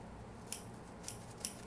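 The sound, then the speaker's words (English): Scissors snip through a packet of starter in three crisp, separate cuts against a quiet, low background hum, with no talking. “Would you get me a scissors?”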